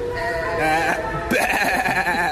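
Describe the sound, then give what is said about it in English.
A goat bleats loudly, a wavering, tremulous cry that rises partway through and lasts about two seconds with no talking. “That's Baby Goat right there.”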